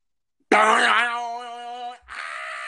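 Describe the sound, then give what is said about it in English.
A person vocally imitates the eerie Slenderman monster noise: a loud, sustained groaning tone that starts harsh and noisy, settles into a steady buzzing pitch, breaks off briefly, then resumes as a raspy hiss. “My impression of the Slenderman noise.”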